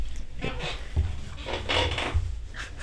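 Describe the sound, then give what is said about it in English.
A squeaky chair creaks and squeaks in a few scratchy, wooden bursts with a couple of soft low thumps as it shifts, fairly quiet. “I have a squeaky chair.”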